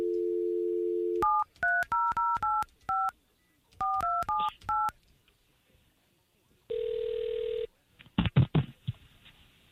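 K92.3 radio station hosts call a listener: a dial tone hums briefly, then about ten quick touch-tone beeps are punched in short bursts, followed by a single long ringback tone. A voice picks up at the end.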